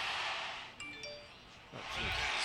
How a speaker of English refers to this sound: Phone blowing up. Yeah, I gotta silence that.